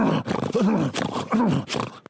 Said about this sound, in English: I'm not making pig noises. I'm grunting.